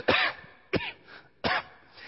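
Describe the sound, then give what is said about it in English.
A voice imitates three sharp, raspy coughs of a grandmother with a cold at night, evenly spaced about three-quarters of a second apart, each loud with short pauses of quiet in between. “She coughs again, the lights go off.”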